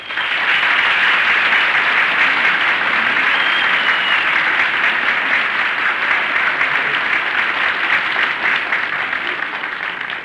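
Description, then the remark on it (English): Sustained applause from a group, a dense steady crackle of many hands clapping at full volume for about ten seconds, with a faint murmur of voices beneath it. “Who was that applauding?”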